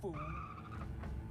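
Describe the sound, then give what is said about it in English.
Tires of a vintage car screech in a sustained skid over a low engine rumble during a crash chase on a major freeway in Los Angeles, from stock footage; a short, fairly loud burst with no voices. “Because there was no way we were going to be doing freeway vintage, crash chases.”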